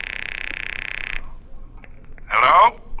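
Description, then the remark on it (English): A telephone bell rings with a steady, buzzing trill lasting just over a second, then falls quiet before a short, louder burst begins again. “It's ringing, take it.”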